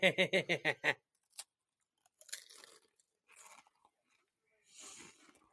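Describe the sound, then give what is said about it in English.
Loud crunching as a crisp snack is bitten right into a microphone: a quick rapid burst of crackly bites, then scattered softer chewing crunches with pauses between them. No talking. “I know, but as I'm crunching into the microphone, I'll tell you, this is pretty good.”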